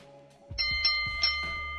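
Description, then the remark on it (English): A bell sound effect rings out in a quick series of bright, metallic strikes, each with a low thump underneath, the tones layering and sustaining after brief quiet at the start. “So hopefully I get the bold enough bell.”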